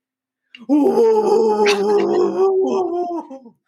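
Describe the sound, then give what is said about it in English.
A person imitates the dog Copper barking at things, voicing one loud, drawn-out bark-like howl that lasts about three seconds, with no other talking around it. “that was actually a really good dog. Thank you. I had a lot of practice mocking copper when he barks at things.”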